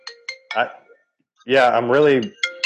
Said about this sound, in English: Guys, you guys talk. I got a phone call coming in.